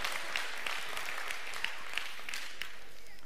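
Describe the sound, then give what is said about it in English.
An audience applauds, with dense, steady clapping that holds at an even, moderate level for a few seconds. Sharper individual claps pop out now and then, and there is no talking over it. “Knew no one was going to clap, but there we go.”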